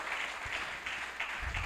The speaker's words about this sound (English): Now you can give the little clap offering for that.